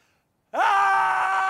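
After a brief silence, a person lets out a loud, sustained scream that rises in pitch and then holds steady at a high, strained tone for about a second.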